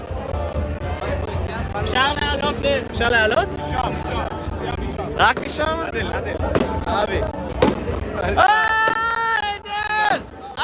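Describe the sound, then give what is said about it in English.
Scattered sharp bangs of fireworks, shot off from the Temple Mount to celebrate Yom Yerushalayim, pop irregularly beneath a busy crowd, with people talking and calling out throughout. “The Arabs are shooting off fireworks from the Temple Mount.”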